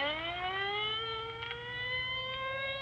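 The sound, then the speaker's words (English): An ambulance siren wails loudly and continuously at dusk, its pitch slowly climbing as it sounds for a few seconds. No voices, just the steady electronic tone over a low rumble. “Well, there goes the ambulance.”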